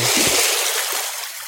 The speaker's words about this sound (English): I think we broke it up with some of those beautiful ocean sounds, right? Can't get enough of my ocean sounds.